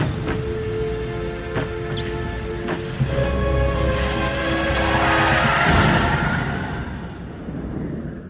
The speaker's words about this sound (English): It starts snowing. Things get progressively darker and harder to see. And then he crashes his car for no reason whatsoever.